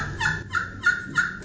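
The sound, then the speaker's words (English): A turkey call, played with fingers and thumbs laid over holes in it, produces a series of about four raspy, resonant yelps in a steady rhythm, each note bright and fairly loud, with no talking. “So when I'm doing yelps or notes, it's real resonant.”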